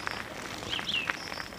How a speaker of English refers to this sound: Being assaulted by birdsong.